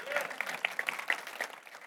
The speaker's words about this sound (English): All right, you clap for that.